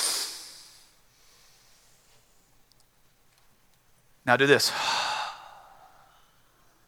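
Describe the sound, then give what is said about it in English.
A crowd, asked by the speaker to do it with him, breathes in and out together in a loud, airy collective sigh that fades, then a man speaks briefly and the whole audience exhales again in unison. “Everybody in here just did something called breathing. You took a breath in, you let a breath out.”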